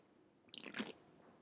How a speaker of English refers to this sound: I just decided when I took that sip of my drink that I'm not editing out my dog tangling up my headphones, unless I remember.